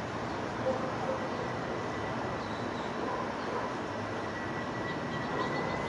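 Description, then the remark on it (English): A steady, broad engine roar of an airplane flying over again, heading further away from the complex, holding an even loudness for the whole stretch with no voices and no clear rise or fade. “Here comes the plane again. I can hear it.”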